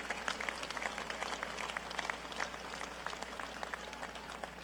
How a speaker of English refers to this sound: So clap it up for that commitment and making that happen.